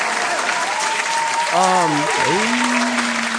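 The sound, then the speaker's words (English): Dense, steady applause from a crowd fills the whole stretch, with a brief cheering or whooping voice rising and falling midway through. “Get another applause in there for that one.”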